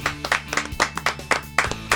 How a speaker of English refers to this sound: So anyway, let's clap it out.